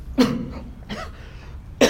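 Three separate coughs spaced about a second apart, each a short harsh burst, with quiet low background noise between them and no talking.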